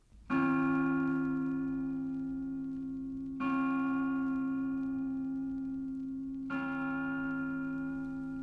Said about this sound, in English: When the broadcasting of the Angelus Bell at noon and 6:00 from the Pro-Cathedral, Dublin, began, a permanently placed microphone used to be switched on to pick up the sound of the bell as it was rung.